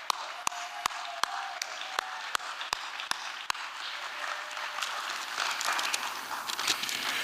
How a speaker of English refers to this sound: Let's give Lou a big round of applause.